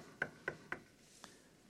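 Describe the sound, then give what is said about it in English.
Three quick, evenly spaced, fairly loud knocks on a door, followed by a fainter fourth tap after a short pause, with no voices. “Jesus is standing at the door of your heart and he's knocking.”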